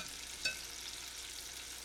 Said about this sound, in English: So it's frying here, and you're kind of just feeling the whole surface of the bowl. Or gradually, slowly. Yeah. You don't want to put it all in there at one time.